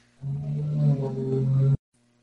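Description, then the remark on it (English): A car zooms by outside with a loud, low droning engine rumble that holds steady for about a second and a half, then cuts off abruptly into silence. “Was that a car that just zoomed by?”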